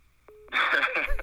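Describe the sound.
A single short, steady mid-pitched call-waiting beep sounds on a phone line, signalling another incoming call, then loud, muffled talking immediately crowds in over it.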